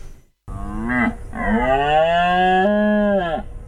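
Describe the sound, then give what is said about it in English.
A red deer in Richmond Park, London, calls with a short groan followed by a long, drawn-out bellow, deep, rich and loud, wavering slightly in pitch before tailing off. No one speaks. “That is a red deer, and lots of them over in Richmond Park, so just down the road from where we are, making these lovely noises at this time of year.”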